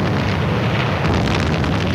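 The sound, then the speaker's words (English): Heavy naval guns firing at hidden Nazi shore batteries during a seaborne invasion, heard as a dense, steady roaring rumble with faint crackling bursts in the second half, no voices. “Big guns fought it out with hidden Nazi shore batteries.”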